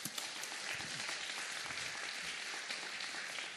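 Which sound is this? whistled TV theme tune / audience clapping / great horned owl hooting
audience clapping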